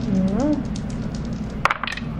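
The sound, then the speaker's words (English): A brief sliding vocal murmur, then dice rolled for a knowledge roll in a game clatter in a quick burst of sharp, bright clicks that tumble and settle within about half a second, over a low steady background hum. “To make a knowledge roll.”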